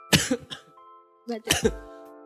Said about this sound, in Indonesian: lu batuk.